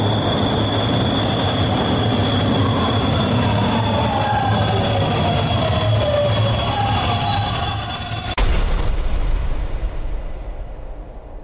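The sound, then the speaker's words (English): A train rolls past with a steady heavy rumble while its wheels squeal loudly against the rails in long, high-pitched screeches that bend in pitch, with a sharp clank near the end. “You took so damn long, and I jumped in front of the train.”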